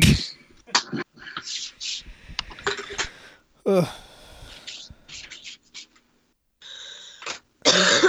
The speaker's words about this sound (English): I'm coughing into my elbow like I'm gonna like spread germs across the fucking laptop into your homes directly. I actually thought about putting on a mask before this one.